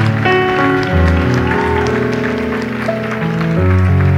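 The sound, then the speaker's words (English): A church audience claps their hands for people who have made a decision, in a steady, dense burst of applause, layered over sustained keyboard or organ music that holds chords throughout. “Clap your hands for them as they made that decision.”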